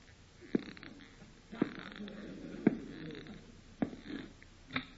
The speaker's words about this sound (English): This is the first time I've ever heard one of them snore.